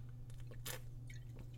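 A quick sip from a bottle of Mexican Coke: a short airy slurp with soft mouth clicks and swallowing sounds around it, set against a steady low electrical hum.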